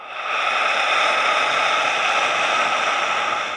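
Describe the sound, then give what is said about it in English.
A long, forceful lion's breath exhale through the mouth during a breathing exercise, a steady airy hiss sustained for a few seconds, with no talking over it. “Lion's breath out.”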